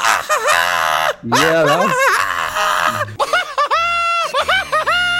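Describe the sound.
A voice imitates a cartoon villain's shrill, cackling victory laugh, rising into high, wavering shrieks in several loud bursts with short breaks between them.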